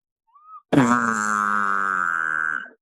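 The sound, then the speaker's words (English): An elk cow call made with a diaphragm call held in the mouth, without a tube: a brief faint squeak, then one loud, buzzy, steady-pitched nasal mew held for about two seconds before it cuts off. “Make a cow sound and buzz with that cow sound. And then it sounded like this without a tube.”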